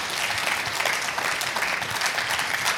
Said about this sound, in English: Would you clap your hands and praise him if you believe that?